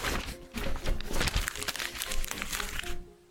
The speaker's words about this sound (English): Okay. All right, put it down. Let's crumple it up and put it down.